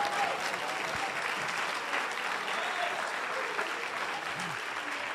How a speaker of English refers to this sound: You ought to clap your hands if you know I'm telling the truth.